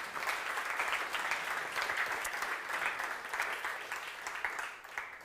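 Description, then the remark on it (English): A room full of people applauds educators steadily, a dense wash of many hands clapping at once that holds at an even level for several seconds, with no voices standing out. “So we can clap for them, but also we're going to pray for them.”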